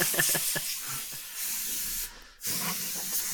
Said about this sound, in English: While that's happening, I'm going to use my air can to clean my keyboard.